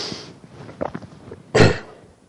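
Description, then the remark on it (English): A single loud cough from a person with bad allergies bursts out near the middle, preceded by a breathy exhale and some quieter throaty rasps, then trailing into near silence. “I'm going to cough. I have really bad allergies right now.”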